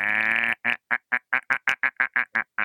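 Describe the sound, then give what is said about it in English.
Pet chickens, angry about the rain, squawk loudly: one long, harsh, drawn-out cry followed by a quick, steady run of about eleven short, clipped clucks, with no voices present. “The chickens are mad, you guys.”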